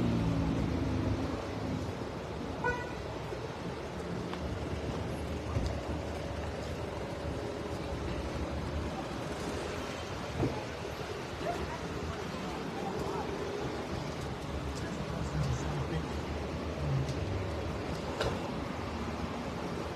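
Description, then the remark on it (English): A tow truck's engine rumbles steadily as it approaches on a public street, a low continuous drone mixed with wind buffeting the microphone and faint background voices. “Here comes the tow truck.”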